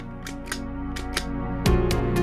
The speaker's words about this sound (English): But even this sound on its own is a little too crappy. So I'm gonna layer in a guitar pedal on top of it. The clicking should work well.